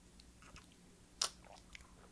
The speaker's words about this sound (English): Here we go. Sips.